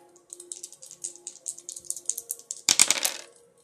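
Dice rattle with a quick series of light clicks, then tumble out in a louder clattering burst near the end before settling into quiet.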